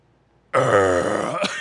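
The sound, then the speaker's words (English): A loud, long burp bursts out after a brief silence, deep and croaky with a rumbling, rasping texture that holds steady for about a second before tailing off. “I burped. Just the biggest fucking burp.”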